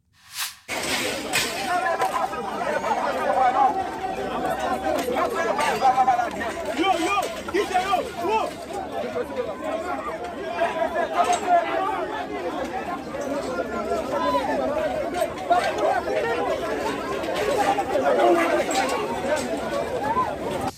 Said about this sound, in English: This was the scene in Mexico recently, as yet another large group of migrants, apparently from Haiti, broke through barriers at a refugee office. Look at this.